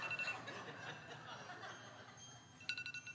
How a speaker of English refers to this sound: How do I shut it off here? Okay. Okay. The alarms went off. Snooze. Shut up, I'm busy. I'm not ready to get up yet.